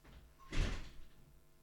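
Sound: door being opened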